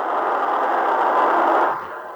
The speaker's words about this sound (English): So here is Heavy White Noise. Oh, we're going to play it.